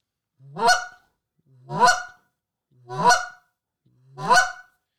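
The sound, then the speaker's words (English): Four goose clucks blown on a goose call as used in goose hunting, each a short low note that breaks sharply upward into a bright honk, evenly spaced about a second apart, loud with nothing else. “Just straight normal clucks, man.”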